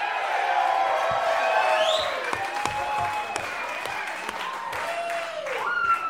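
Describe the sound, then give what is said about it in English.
A crowd cheers and applauds steadily as William Montgomery is introduced, with scattered whoops and whistles rising over dense clapping that stays loud for the whole stretch. “Make some noise, people.”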